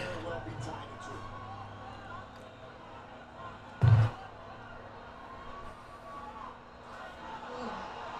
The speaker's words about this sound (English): Well, he's getting booed from the crowd, though, for that.